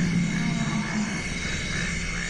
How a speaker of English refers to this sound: We have a little social behavior going on here among some forest elephants. In the background, of course, there are frogs and insects of the wet tropical forest night.